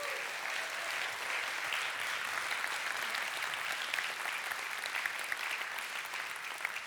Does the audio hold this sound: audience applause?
yes